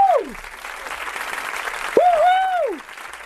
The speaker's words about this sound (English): Have one of your friends just applaud whenever you say something, no matter how meaningless, and watch how it makes you feel.